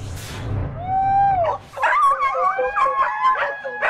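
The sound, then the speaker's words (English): A pack of dogs belonging to a mountain man living alone in a Tennessee forest howl together in long, rising and wavering tones, overlapping into a loud chorus, with a few sharper yips and barks mixed in. “His only companionship, a loyal pack of dogs he considered to be family.”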